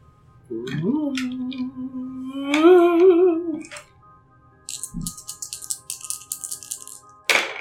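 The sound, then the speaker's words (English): A voice holds a long, wavering tone, then three dice clatter in a quick run of dry, rattling clicks lasting a couple of seconds, ending with a sharper knock. “And now roll three dice.”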